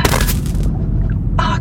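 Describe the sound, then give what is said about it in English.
A loud explosion erupts in a broad blast over a deep, sustained rumble, followed by a second harsh burst as the boom rolls on. “Explosion.”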